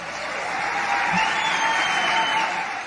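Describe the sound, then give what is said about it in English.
Audience applause follows a female presidential candidate's campaign remarks about Israel and Hezbollah, a steady wash of many hands clapping at moderate volume, sustained for a few seconds without any voices over it; not a standing ovation, and no booing. “Not exactly a standing ovation, but she wasn't booed for it either.”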